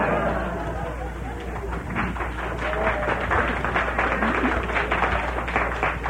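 An audience applauds in a dense, steady patter of many hands clapping, holding at a fairly even loudness for about six seconds, with some crowd murmur mixed in.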